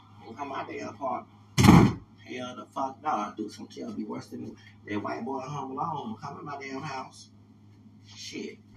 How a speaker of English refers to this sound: Hold on, let me close the damn door.